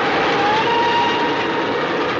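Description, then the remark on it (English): A steam train blasts through a station, a dense, continuous rushing clatter that stays loud throughout, with a faint high whine running through the noise. No voices. “but the movie opens with just a spectacular shot of a train blasting through a station.”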